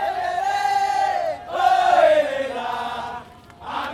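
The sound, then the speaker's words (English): A gathered crowd of marchers in Dili, getting ready to walk through the streets to Santa Cruz Cemetery in memory of the Santa Cruz massacre, shouts together in loud, sustained unison calls. There are three long drawn-out cries separated by brief pauses, with many voices blending into one rising and falling chant. “The marchers are getting ready to walk through the streets of Dili to Santa Cruz Cemetery.”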